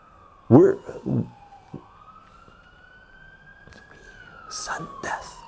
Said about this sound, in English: we've been having healthcare strikes here in the UK. Some people have been waiting over 24 hours for an ambulance to arrive. Yeah, here, you can hear an ambulance.